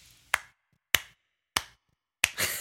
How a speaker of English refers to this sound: Those are my claps for you